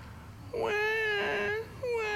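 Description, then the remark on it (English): A newborn baby cries in a loud, high, wavering wail lasting about a second, then a second cry begins after a brief pause, with no one talking. “When a newborn cries, how does it sound?”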